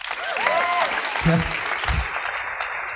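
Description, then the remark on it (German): An audience applauds the decoration team in a steady, dense wash of clapping lasting a few seconds, with brief whoops and voices calling out over it. “Herzlichen Applaus für das Deko-Team.”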